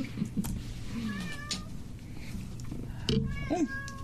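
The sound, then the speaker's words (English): A cat meows insistently several times for food, its wavering, rising cries heard while people talk underneath. “Kitties can't eat Danish.”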